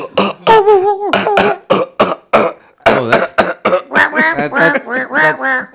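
A long run of rapid, harsh coughing bursts, close and loud, with a strained, voiced, almost honking quality, repeating without pause for several seconds.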